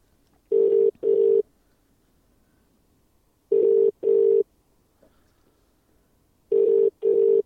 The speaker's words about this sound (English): Answer the phone. Looks like we have another non-answer.